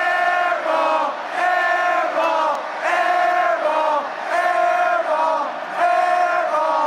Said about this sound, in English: That second clip is what I consider the classic airball chant. The syllables are long and drawn out, the crowd perfectly in sync as it taunts the not-so-straight-shooting opposition. This is a beautiful, miraculous thing.